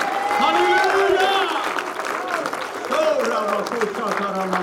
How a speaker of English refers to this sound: Can you give Jesus an applause this morning? Come on. Come on.